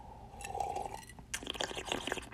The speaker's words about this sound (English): Hold on a second, I got to take another sip.